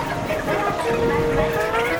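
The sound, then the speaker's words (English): A train rumbles steadily past on a railway, a broad roaring clatter with a thin metallic whine or squeal drifting above it, holding an even loudness throughout. “These are railways.”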